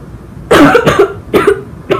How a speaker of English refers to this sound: Sorry, just coughed.